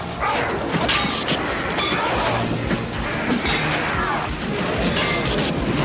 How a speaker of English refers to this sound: More lightning effect! See, it's just like the start of Highlander. It is just like the start of Highlander.